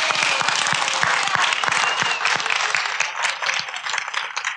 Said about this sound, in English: All right, let's give them a round of applause. Good job.